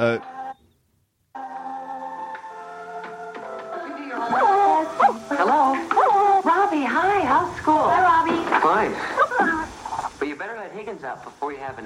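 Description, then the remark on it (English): A dog, Higgins, waiting to be let out, whimpers and yelps in a rapid string of pitch-bending cries, fairly loud, following a few seconds of steady, sustained tones at the start. “let the dog out.”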